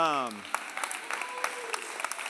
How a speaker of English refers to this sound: So give honor to my parents. My parents. No, I didn't say you give honor. I mean, I'm giving honor to my parents today. But it's okay to clap. Sorry, I've stopped you from clapping twice. I'm sorry.